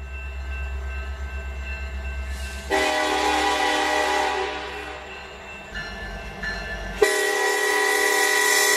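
A loud train horn blares in sustained harmonic blasts over rumbling rail noise, cutting out briefly before a final sharp blast, with no one talking.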